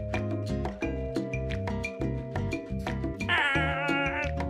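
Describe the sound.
A person does a bird impression, a high warbling squeal lasting about a second, rising over a loud, busy bed of steady music-like tones.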